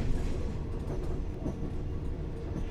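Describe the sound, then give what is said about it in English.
A steady, low rumble of an overnight train rolling and rocking along the tracks, with a continuous dense drone and faint rattling, heard from inside a carriage with no talking. “I could have just sat there all night just watching the scenery go by, feeling the rocking of the train.”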